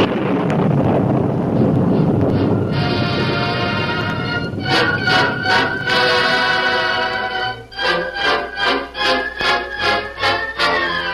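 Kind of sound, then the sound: nature, thunder and rain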